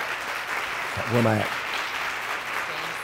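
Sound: audience applauding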